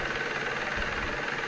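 An excavator works with a steady, loud mechanical drone, its engine churning continuously with a rough, rattling texture and no pauses. No voices are heard.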